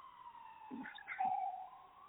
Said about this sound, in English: Hold on. So many alarms, so many sounds. Hold on one second.